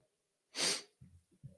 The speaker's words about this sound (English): Sorry for the sniffles, guys. I am a little sick today.